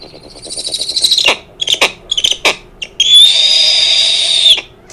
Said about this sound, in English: Today's animal is the snowy owl. Snowy owls are mostly white and love to eat rodents and ducks. They've been known to eat up to 1,600 lemmings in 1 year. Snowy owls are also the biggest owls in the United States. This is what they sound like.